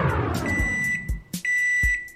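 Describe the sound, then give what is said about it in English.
A microwave oven's high electronic beep rings out and holds steady as the microwave is turned on to heat leftovers, with a few dull clunks and taps, like buttons being pressed or a door closing, breaking in over it. No one speaks. “All right, let's turn the microwave on and get these leftovers rolling.”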